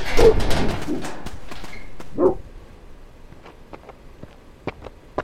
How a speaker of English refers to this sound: Are those your dogs? I'm terribly sorry. They ran off before I could stop them.